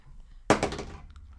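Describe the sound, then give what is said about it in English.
Dice rolled to hit during a tabletop game strike a hard surface with a sharp, loud clack, then rattle and tumble in a quick burst of smaller clicks that fade within about half a second. No one speaks. “That's with the loudest fucking dice ever.”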